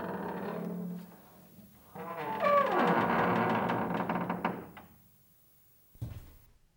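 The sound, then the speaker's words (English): A door slowly creaks open with a drawn-out, groaning squeak lasting a few seconds, after a brief low rumble. It ends with a soft knock, and no one speaks. “His door opened.”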